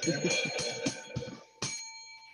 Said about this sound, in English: Ding the bell. I'm done.